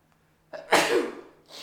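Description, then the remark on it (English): A single loud sneeze: a quick sharp inhale, then an explosive burst of breath that trails off, followed by a short exhale. “God bless you.”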